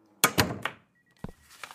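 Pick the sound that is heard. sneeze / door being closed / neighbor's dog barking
door being closed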